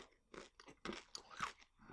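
Crunchy chewing on campfire s'mores M&Ms, a series of uneven bites and grinding crunches with bright, crackly texture, heard alone without talking.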